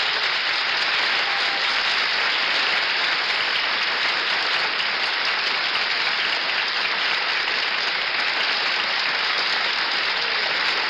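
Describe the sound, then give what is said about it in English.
Sustained applause from a studio audience for Fireman Joe Page, the World Series relief pitcher, a dense steady clatter of many hands clapping at an even loudness for about eleven seconds, with no voices over it. “That applause is for you, Joe, and I'll bet there are a lot of people sitting at their loudspeakers tonight applauding your great performances of the series.”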